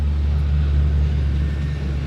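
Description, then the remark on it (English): A heavy truck carrying wood rumbles by, its deep, steady engine drone holding at an even loudness throughout, with no voices present. “Got a truck with wood, I think, driving past.”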